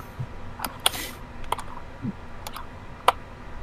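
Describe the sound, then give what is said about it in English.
Sharp plastic clicks and clacks of a Rubik's Cube being twisted as someone solves it, coming in a loose, irregular series of quick snaps over a quiet background, fairly crisp. “fixing a Rubik's Cube”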